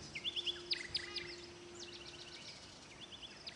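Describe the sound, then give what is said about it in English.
Quick, bright chirps and tweets from a bird flying by come in bursts, loudest early on, then fade slightly before a few more calls return near the end, over a faint steady hum with no talking. “By the way, did you happen to hear the bird as it flew by?”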